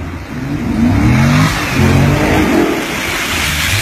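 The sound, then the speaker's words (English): A fifth-generation Chevrolet Camaro, a 2014 or 2015, revs hard in repeated rising and falling surges while doing burnouts in shallow ocean water at a beach in the Middle East, with a steady rushing hiss beneath it like spinning tires throwing spray. No one speaks. “It's a fifth generation Camaro, like a 15 or 14.”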